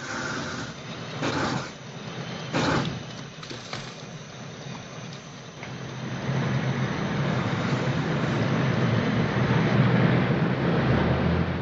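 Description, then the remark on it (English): A deep diesel engine rumbles and grows steadily louder as a vehicle draws closer, with a few sharp knocks early on and a steady wind-like hiss throughout. No one speaks. “A dragon that runs on diesel engines.”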